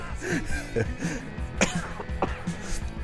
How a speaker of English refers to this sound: So if you hear me coughing, you know, that's what's going on.